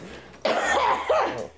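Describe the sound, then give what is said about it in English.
A person coughs, two harsh, raspy bursts run together over about a second, loud and breathy, with no talking around them. “I need a cough.”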